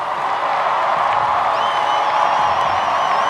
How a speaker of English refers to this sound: Barack Obama now projected to be the 44th president of the United States. The crowd went hysterical. There were tears of joy. And the masses that lined Chicago's Grant Park were ecstatic to be a part of history.